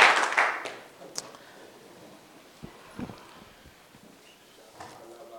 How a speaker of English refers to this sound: Clap your hands together for the Lord and you may be seated.